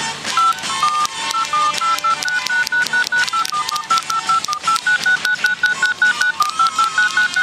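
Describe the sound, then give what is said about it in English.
A rapid string of touch-tone beeps as a phone number is dialed, short evenly spaced tones of shifting pitch, fairly loud, with no talking. “I can actually ring it. Ring it again. Let's see if anyone answers.”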